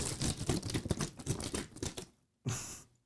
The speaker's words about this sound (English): So I have a water bottle, and there's water in it. Just like a little bit.